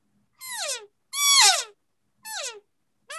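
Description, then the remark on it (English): A small hands-free elk call, held by a groove for the teeth and used to stop an elk for a shot, gives four short, nasal mews, each sliding downward in pitch with a buzzy, harmonic tone, spaced by brief silences; the last is cut off. “So you don't get quite the versatile sound hands-free, but you're only going to use hands-free to make your, you know, stop your elk to shoot, right?”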